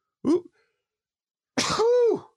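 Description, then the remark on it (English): A single sneeze: a brief sharp catch of breath, a short pause, then a loud explosive burst that trails into a voiced, falling tone. No talking. “that's a good sneeze. Should stop and re-record.”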